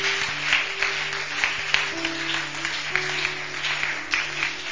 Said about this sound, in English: Oh, it's a good place to clap.